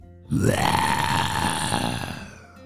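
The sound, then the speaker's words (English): A ginormous Nile crocodile, its giant mouth gaping wide open, gives a deep, guttural growl that rises briefly in pitch, then holds as one loud, rough, throaty rumble for about two seconds before fading. No one speaks. “As they turned around, there it was, a ginormous Nile crocodile with a giant mouth gaping wide open.”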